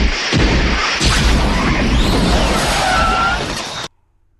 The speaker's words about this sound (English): After hitting the time circuits again, the crew arrived in the same exact spot a half an hour later, crashing into the second tower of the World Trade Center.